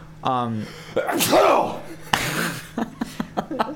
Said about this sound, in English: Bless you